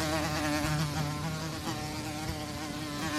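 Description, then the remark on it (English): A housefly buzzes around a bar, the Elbow Room in Bismarck, North Dakota, steadily for a few seconds, a continuous droning hum with a rich, wavering pitch that rises and dips slightly as it flits about. No voices are heard. “All day long, you have buzzed around the bar, and all day long, music.”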